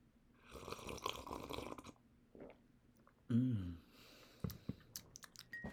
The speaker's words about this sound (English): Now, hold on. I need to take a sip of my tea.